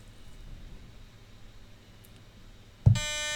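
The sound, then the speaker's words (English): A quiz game buzzer goes off once, a sudden loud, harsh electronic buzz that cuts in after a stretch of quiet background hiss and holds steady until the end. “I know who should have won it, and I feel like they didn't win, so I don't want to buzz in.”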